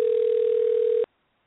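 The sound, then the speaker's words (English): After a number is typed into a phone and the dial button pressed, a telephone dialing tone plays as one steady, unbroken mid-pitched hum for about a second, then cuts off abruptly into silence. No one speaks. “Okay, I typed the number in, and I'm pressing the dial button. And it says dialing. You hear that?”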